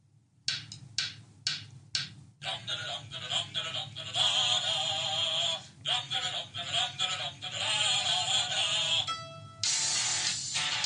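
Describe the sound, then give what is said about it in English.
A country song plays, opening with a few sharp, evenly spaced hits before a full, loud arrangement with a wavering, twangy voice and bright instruments carries on steadily to the end. “So let's listen up here, folks.”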